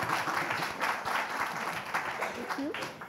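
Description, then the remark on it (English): A crowd applauds steadily for about three seconds as invited guests are introduced, a dense wash of many hands clapping at once, with a brief vocal sound rising faintly through it near the end. “maybe you could give a round of applause.”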